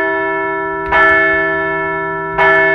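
Two loud, resonant bell strikes about a second and a half apart, each followed by a long ringing sustain with rich overtones that hum steadily between hits.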